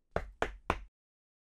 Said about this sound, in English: Fox knocked on the door.